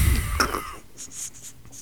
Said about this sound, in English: You know, I'm sorry for all the coughing, by the way. I'm quite ill.